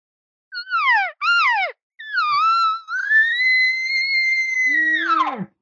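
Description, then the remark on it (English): An elk caller gives three short, descending nasal cow calls, then goes straight into a long, high, whistling roundup bugle with no hesitation. The bugle holds steady before breaking down into low guttural grunts at the end. No talking. “Gives 2-3 cow calls and goes right into the bugle.”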